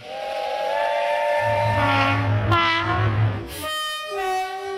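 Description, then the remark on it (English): A loud train horn sounds in long, overlapping blasts that shift pitch, over the steady low rumble of a rolling train, as a sound effect opening a show's Lame Train segment. No one speaks. “All right, so let's move on to the end of the show with the Lame Love and Hot Trains, and let's kick it off with the Lame Train.”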